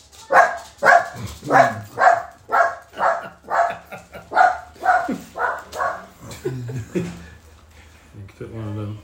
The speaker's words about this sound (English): Is that the doorbell? Mm-hmm. All right, Turbo. Thank you. Turbo's going to bark. Turbo?